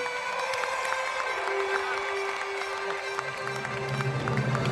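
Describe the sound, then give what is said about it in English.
Polite applause from a baseball stadium crowd as Scott Rolen is announced, an even, steady wash of clapping and crowd murmur that holds at one level throughout, with a low sustained hum beneath and no standout voices. “He got politely applauded, as you would when they're announcing the parents of the groom at the wedding.”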